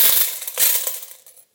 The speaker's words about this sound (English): And they were coming along and the rich people in the metal containers that were the temple would be pouring their coins in.